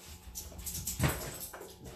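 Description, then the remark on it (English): Dogs whimper and whine while begging for a treat, with short high-pitched whines in a cluster and a brief louder yelp in the middle, no talking. “Come on, dogs. Shit, I'm fucking with my shit. You want a treat?”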